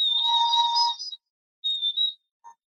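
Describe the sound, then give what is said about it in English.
A small, bird-shaped water whistle, an early modern instrument filled with a little water, blown in three bursts so the water bubbles: a long, high warbling trill, a pause, a shorter wavering trill, then a brief chirp. Shrill, fluttering tones with no talking. “And it is because the idea is like you're blowing and it's bubbling.”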